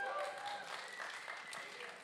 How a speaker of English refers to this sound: I mean, you didn't have to clap. You could have just said yes. I'm just kidding.